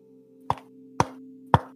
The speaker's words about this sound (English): … knocks on his head. Dude, it bothers me that sound actually came from your head. I gotta commit, dog. Dude, that hurt my forehead. Kind of felt good.